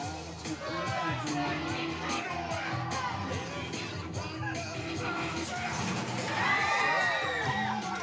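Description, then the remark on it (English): A dense crowd of people screaming, shouting and laughing together on a thrill ride in motion, loud and continuous with rising excited cries, over a busy rumbling background with music and sound effects. “just a lot of, like, you can tell music, yeah, sound effects, a lot of, like, people screaming, screaming, yes, and laughing at the same time.”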